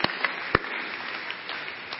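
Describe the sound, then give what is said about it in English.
A church audience applauds together, a dense, steady patter of many hands clapping at moderate volume, with a few sharper individual claps standing out near the start. They clap for the 13 people baptized at Prairie Creek the week before. “Yeah, that's a good thing to clap for.”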